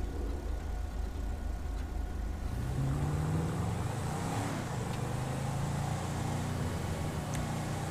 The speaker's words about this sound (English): Wait, that car just went through. Oh no, it was green. Never mind. I was wrong, it's green.